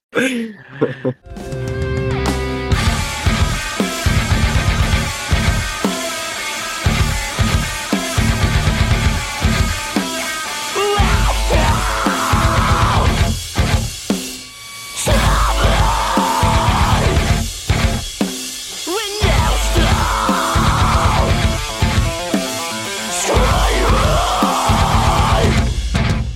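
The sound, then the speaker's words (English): A loud, heavy band breakdown at the end of a song pounds along with thick distorted guitars and hard rhythmic drum hits, while harsh screamed vocals ("I'll stop stabbing when you stop screaming") cut in and out in bursts over the top. “That song also has the super iconic breakdown at the end when he's like, "I'll stop stabbing when you stop screaming."”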